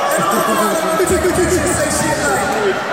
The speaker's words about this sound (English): Oh, they booing …, bro.